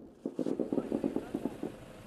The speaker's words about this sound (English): And later, small arms fire rings out as Israeli troops head for the Hamas stronghold of Gaza City.